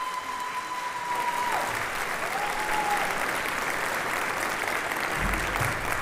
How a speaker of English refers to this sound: Amazing student musicians who put on just a magical, magical evening. Can we give a round of applause for these tremendous, tremendous talented kids?